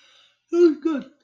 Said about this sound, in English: As he yawns, yeah, it was good.